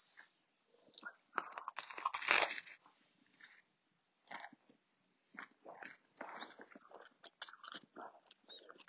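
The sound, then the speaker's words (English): Crunchy bites and chewing on a grilled sandwich made with homemade bread, with a loud crackling crunch near the start followed by irregular smaller chomps and mouth sounds, no talking. “Mama made bread, so made a grilled sandwich.”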